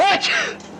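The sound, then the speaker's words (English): A single loud sneeze: a short voiced intake that breaks into a sharp, breathy burst, then trails off quickly. Nothing else is heard alongside it. “Gesundheit.”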